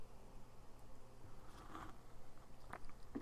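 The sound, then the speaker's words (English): Someone takes a quiet sip of water, with a few soft, wet mouth sounds and swallows spaced over a few seconds against a low background hum, no talking. “Let me get a drink of water real quick.”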